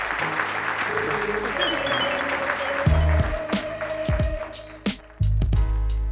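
A large audience claps steadily and fairly loudly for several seconds for two speakers after an onstage conversation, a dense wash of applause with a faint sustained tone and a couple of low thumps underneath.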